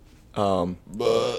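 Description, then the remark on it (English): A loud sneeze that comes out as two strained, tonal bursts, voiced and wavering much like a bleating sheep, with a brief hiss between them. “Literal Minecraft sheep over here.”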